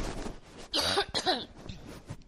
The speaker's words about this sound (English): Hold on a second. I have to cough.